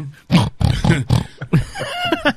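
A pig oinks and grunts in a quick run of about half a dozen snorty bursts, fairly loud, with no talking around it.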